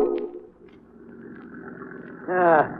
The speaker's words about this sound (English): You know, I can still hear the motor of the boat and the water splash around the prow.